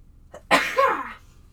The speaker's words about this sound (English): Oh no, I have to sneeze. Sorry.